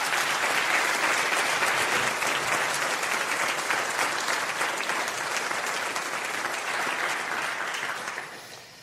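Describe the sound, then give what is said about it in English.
Sustained audience applause welcoming Dr. Boot to the stage, a dense steady patter of many hands clapping for about eight seconds before tapering off at the end. No voices stand out. “Boot to the stage, and why don't you all give him a round of applause.”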